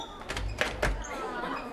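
An office door opens: a few quick clicks and a soft thump from the latch and handle in the first second, then a faint lingering ring that fades into quiet room tone.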